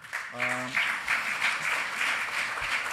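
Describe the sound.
An audience applauds a panel steadily throughout, a dense, even wash of many hands clapping at moderate loudness, with a brief voiced tone near the start.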